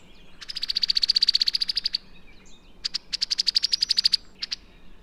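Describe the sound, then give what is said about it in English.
A female cowbird, a blackbird that has landed in a tree, gives a rapid metallic trill: two bursts of dry, chattering notes, clear with no talking, followed by a brief extra pair of notes over faint background hiss. “Yet another blackbird lands in the tree and gives a metallic trill. A female cowbird.”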